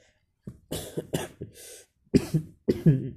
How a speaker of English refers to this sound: Sorry, in these days I'm facing this cough and fever, so I don't feel good.